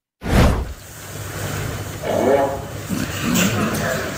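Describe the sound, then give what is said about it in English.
At a quiet snooker competition, a brief, low, rasping blurt from a fart machine brought in by a spectator cuts through the hush, followed by a rising murmur of crowd voices and scattered laughter. “And someone in the crowd brought in a fart machine.”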